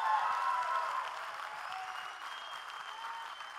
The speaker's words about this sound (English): Somebody give God one more clap offering.